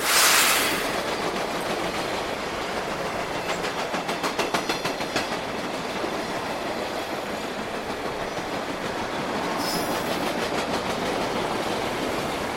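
A train rolls steadily along the tracks, a dense, loud rumble with a quick run of rhythmic clickety-clack from the wheels and brief hissing surges, no voices.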